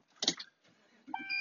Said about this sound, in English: And if you can't tell by the dinging, yes, I'm in the truck on the way to work, which is my normal location for recording these mutual aid episodes, it seems.